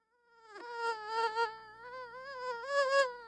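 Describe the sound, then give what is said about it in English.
A thin, whining mosquito buzz drones steadily for a few seconds indoors in the dead of winter, its pitch wavering up and down as if the insect circles. No one speaks. “A mosquito in here now in the dead of winter?”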